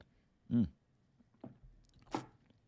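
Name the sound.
sipping a drink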